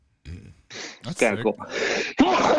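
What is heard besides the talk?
sneeze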